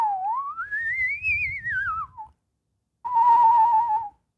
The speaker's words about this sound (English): I can whistle real good. I'm real good with my mouth and tongue.